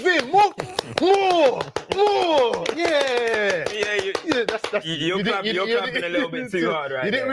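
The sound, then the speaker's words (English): Sharp, hard hand claps ring out in a quick, steady rhythm, loud, running beneath animated voices talking over them before the clapping fades out. “You're clapping a little bit too hard.”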